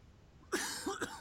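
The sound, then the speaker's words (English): A loud fit of harsh, raspy coughs from someone who has been coughing for two days: three or four rough bursts in quick succession after a brief quiet moment, with no talking. “I've been coughing my brains out for 2 fucking days.”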